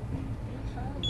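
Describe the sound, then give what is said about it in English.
A wheelchair alarm, placed on the wheelchair to alert staff when the woman in it gets up and to help prevent a fall, gives a short, high-pitched electronic beep near the end. The beep is fairly clear over a steady low rumble and faint background murmur. “So what happens is the alarm. So it'll alert us, but we use that in the bed as well. We have so many alarms in the bed.”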